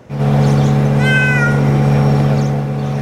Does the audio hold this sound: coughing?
no